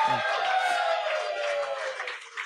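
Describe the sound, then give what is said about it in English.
An audience cheers loudly on the host's request for a couple of seconds, a dense wash of shouts and high whoops that holds steady before tapering slightly at the end. “So, when I make a decision that you agree with, I would like for you to cheer. Give that a shot right now.”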